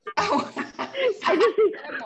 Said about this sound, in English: Sorry, I keep coughing my throat. I thought you were laughing. Yeah, no, I'm coughing and I don't want to cough. So I'm trying to mute myself and cough.